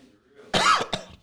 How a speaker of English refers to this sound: Nah, man, don't cough like that, man.